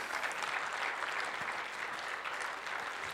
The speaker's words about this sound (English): and give them a hand clap as they go. Would you do that?